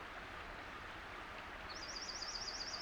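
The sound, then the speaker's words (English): A bright, rapid junco trill begins partway through, high and steady, along with the high-pitched song of a Louisiana waterthrush, over the constant rush of a stream at the bottom of a hollow; no voices. “The bright trill of a jonco and the high-pitched song of a Louisiana water thrush.”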